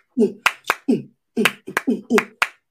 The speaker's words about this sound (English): I don't know what kind of clapping I'm doing.